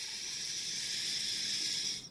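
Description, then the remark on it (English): A long, steady breath drawn in through the nose, an airy hiss holding even for about two seconds before tapering off, with no talking. “Wherever this is playing in your headphones or in the speaker of your car, just to take a deep breath through your nose.”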